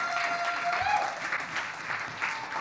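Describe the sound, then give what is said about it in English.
Steady audience applause as the speaker's wife comes up: dense, continuous clapping from many hands with a few brief rises in intensity, holding at a moderate level throughout, no talking over it. “Guys, would you give it up for my beautiful bride as she comes up?”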